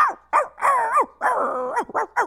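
A dog barks about six times in quick succession, loud and alone with no talking. Some barks are short and sharp, others drawn out into longer, wavering yowls.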